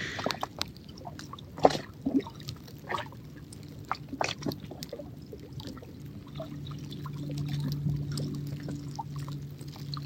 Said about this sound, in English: As the light's fading, the mist hangs over the water. The water sings us good night or good evening.